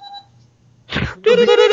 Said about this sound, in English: Is it R2-D2? It's Morse code.